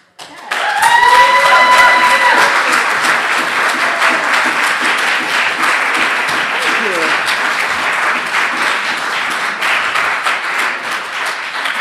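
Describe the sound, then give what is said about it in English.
A crowd breaks into loud, sustained applause that holds steady for about ten seconds, with a few voices whooping and calling out over the dense, crackling clapping. “I'm assuming the applause is for those awesome window sketches.”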